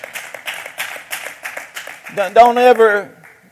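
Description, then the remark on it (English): A crowd claps hands for doctors, lawyers, advisors and counselors in a quick, steady rhythm, loud sharp slaps repeating for about two seconds, then a voice rises in a sustained shout over the fading claps. “We ought to clap our hands for doctors and lawyers and advisors and counselors.”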